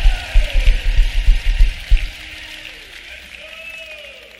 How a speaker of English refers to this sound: Come on, give a big clap offering to Jesus.